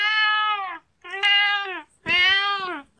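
A cat named Kipper lets out three long, drawn-out complaining meows in a row, loud, with short pauses between them and no talking.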